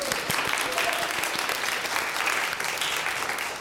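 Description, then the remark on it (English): A steady round of applause from a crowd for the sun on a sunny morning, dense overlapping claps holding a constant level for several seconds before easing slightly at the end. “Can we just do a round of applause for the sun?”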